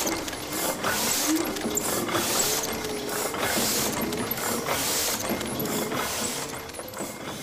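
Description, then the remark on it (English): A Heidelberg platen printing press runs steadily, its clanking, ratcheting mechanism cycling in a regular rhythm with a constant mechanical rumble and no voices. “Right, this is a Heidelberg Platen.”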